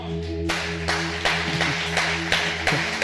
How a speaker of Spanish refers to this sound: Y yo creo que él se merece un aplauso más fuerte que ese. Colócate de pie, iglesia.